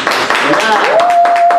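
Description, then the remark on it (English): Hands clapping in a steady, fairly loud burst, joined by a sustained whistle-like tone that rises and then holds. “Hands clapping.”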